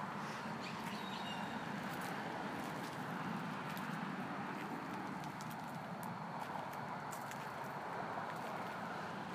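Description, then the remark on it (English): Scattered hollow plunks and knocks of frogs sliding off the bank and dropping into a pond ring out irregularly over a steady outdoor hiss, with a few faint bird chirps in the background. “The kerplunking of frogs.”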